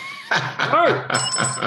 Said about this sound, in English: We're going to ring the bell for you.